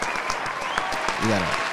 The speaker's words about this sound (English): We have a whole soundbite for that. For what? It's technology. See, when I push the button like this. Yeah. I mean. And then I go like this. If you hear a crowd clapping, are you not going to clap with them?